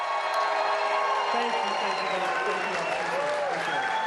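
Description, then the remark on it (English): A large crowd at the bar on Holmgren Way cheers and applauds steadily for Donald Driver, a dense wash of clapping with whoops and shouted voices rising over it, loud and continuous throughout. “The only way you have a crowd this big is when this man's in the building. Give it up, Donald Driver.”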